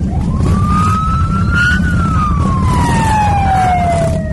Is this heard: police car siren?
yes